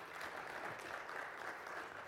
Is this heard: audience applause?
yes